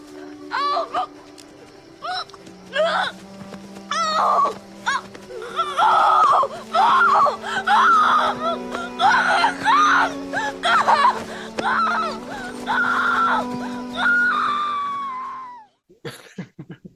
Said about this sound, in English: … rolling around on the ground, blood pouring out of her mouth, screaming